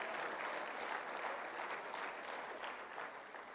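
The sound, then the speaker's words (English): An audience at a church service gives God a hand clap for his church, sustained, dense applause, a steady wash of many hands that holds strong throughout and tapers off only slightly at the end. “Can we give God a hand clap for his church today?”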